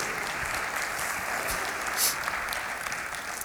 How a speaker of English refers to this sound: But yeah, you can applaud.